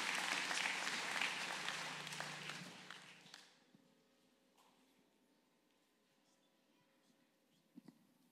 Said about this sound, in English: All right, let's give these families another round of applause.